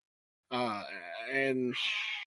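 Cats fighting: a loud, wavering yowl lasting about a second and a half, then a harsh hissing spit. No one speaks.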